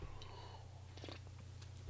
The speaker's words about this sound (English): I need another sip of coffee. Hold on.